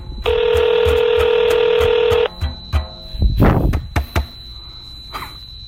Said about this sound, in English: No, we're just drunk dialing people.